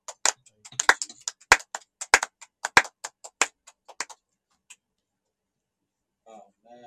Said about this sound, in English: Let us give a clap of it to Jesus Christ for all he has done.